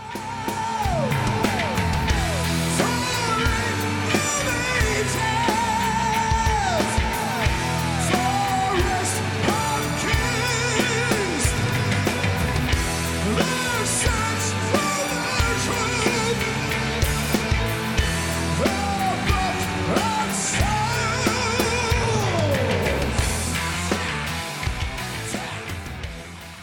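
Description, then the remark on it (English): Live heavy metal concert recording, loud and dense throughout, with driving guitars, soaring vocal lines and a sustained keyboard layer, played off stage by the band's bass tech, blended into the full band, plus occasional crowd yells. “So when you hear the live keyboards, that's him playing kind of off stage.”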